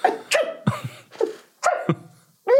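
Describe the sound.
A voice imitates someone sneezing in the morning in a quick series of sharp, breathy bursts, some with a vocal squeak, repeated about six or seven times with short gaps between.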